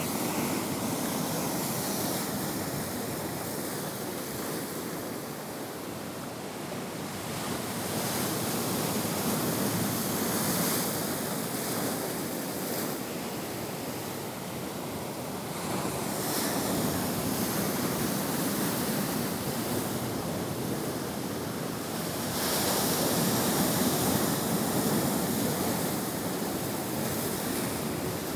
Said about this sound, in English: Wow, the ocean. A mesmerizing wonder. Even just the sound of the waves, the water moving around, can put you in a trance.